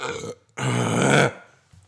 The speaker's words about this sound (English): But it was in my mouth and I had to burp.